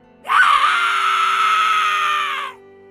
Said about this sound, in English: I waited for screams. But then it came. A scream I had never heard leave my mom's mouth.